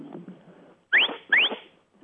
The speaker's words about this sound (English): I use verbal commands such as come by. Doesn't make much sense, but come by means go to the left. And the whistle command that goes with that command is a short, sharp whistle. Would you like to hear it? I would love to hear it. Okay, this is it.